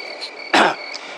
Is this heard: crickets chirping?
yes